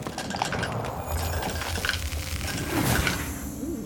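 A busy scatter of many dice being rolled, clattering and clicking together as they tumble and knock, steady throughout with no voices.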